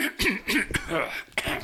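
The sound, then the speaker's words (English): Several short, raspy bursts of coughing and throat clearing from a person getting over a cold, coming in an uneven series over a second and a half with no talking. “Well, I'm still getting over this cold. Oh yeah. It's the cough and the you know, is always the last thing to go.”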